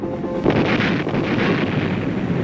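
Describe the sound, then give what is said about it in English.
The pilot of a helicopter gunship arms and fires its rocket system. A sudden loud blast swells into a continuous, dense rushing roar that holds steady for about two seconds, with no voices. “When the pilot arms and fires the rocket system,”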